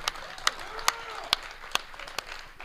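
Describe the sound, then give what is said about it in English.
An audience claps together in a slow, steady rhythm, about six sharp claps spaced evenly apart, with a faint murmur of voices underneath. “Come on, guys. Clap. Clap.”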